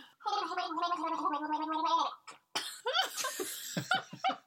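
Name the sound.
person gargling water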